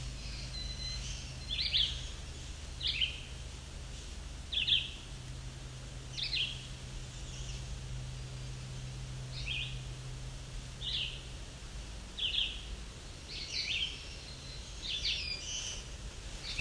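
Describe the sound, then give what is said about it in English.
A black-throated blue warbler sings short, buzzy high phrases repeated at intervals, fairly faint over a steady low hum of background noise; no one speaks. “There we go, black-throated blue warbler.”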